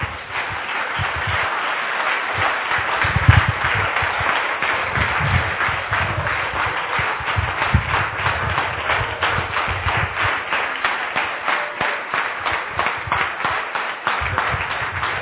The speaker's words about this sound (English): Give Jesus a marvelous round of applause.